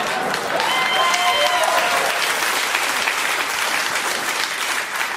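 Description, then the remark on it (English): An audience applauds steadily for about five seconds, a dense, even wash of clapping with a brief tonal cheer or voice rising over it near the start. “And I'm sure everyone who just clapped is thinking the same thing.”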